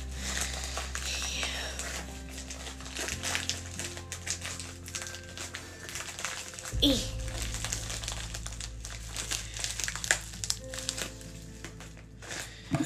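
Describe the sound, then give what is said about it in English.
A knife slicing open a plastic package, with steady crinkling and scraping punctuated by sharp little crackles over a low, constant background hum. “We have a knife. We're gonna cut it open.”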